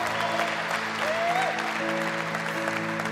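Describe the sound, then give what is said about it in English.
A church audience claps, hollers and cheers steadily throughout as a thank-you to people watching across America and the world, a dense wash of applause over sustained musical tones, with a single rising and falling whoop-like call cutting through partway. “So can you all help me holler and hoop real loud and clap your hands and put together as a sign to say thank you?”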